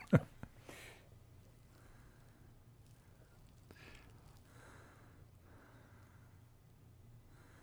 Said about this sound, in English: I can hear somebody breathing. I think that might be me. Yeah, it's the oxygen, you know? I gotta have it.